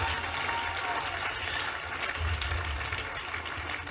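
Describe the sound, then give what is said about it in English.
A crowd claps steadily for several seconds, a dense, continuous patter of many hands with a low rumble underneath and no clear voices. “Oh, look at the way you are clapping.”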